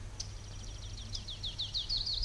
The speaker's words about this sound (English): Who is it? It's a warbler. It's a warbler.